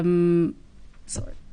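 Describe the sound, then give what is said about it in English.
A sneeze: a loud, drawn-out voiced "aah" breaks off, and after a short pause comes a sharp, hissy burst of air. “Bless you. Excuse me.”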